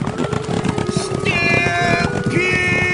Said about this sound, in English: They're not cats, they're cows, and they're heading toward the water cooler.